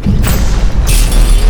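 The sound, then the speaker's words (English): Heavy blasts from two quantum cannons, ten times stronger than normal energy cannons, slam against a shield, a deep booming rumble that stays loud throughout, with a sharper crackling burst breaking in partway through. No voices. “Those are quantum cannons. They're 10 times stronger than normal energy cannons.”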